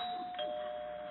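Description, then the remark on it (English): A doorbell chimes, its steady electronic tone ringing without pause and shifting slightly in pitch partway through, heard fairly softly against a faint hiss with no voices. “standing behind the door right now, waiting for me to ring the bell.”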